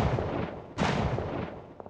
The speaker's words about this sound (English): Without warning, two shots rang out.